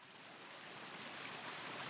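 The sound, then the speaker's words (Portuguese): Cold water pours steadily from a large tap under a scorching sun, a continuous hissing rush with no pauses, fairly soft and even throughout, with no voices. “Que fria! Que delícia a água sob esse sol escaldante.”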